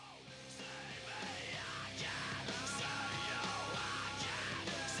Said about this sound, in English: the vocals of … on this track are incredible. Really harsh, guttural screaming.